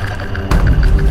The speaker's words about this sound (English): Let's go into the bathroom here. It's like my bathroom and laundry room. That's my hair dryer.